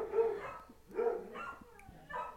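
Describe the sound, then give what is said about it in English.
Two dogs barking while playing with each other, with about four short, yappy barks coming in quick succession at moderate volume and no voices. “Bark, bark, bark. It's bark, Theo. Bark, bark, him bark, and Tyson bark, are playing.”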